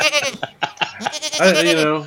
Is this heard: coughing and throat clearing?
no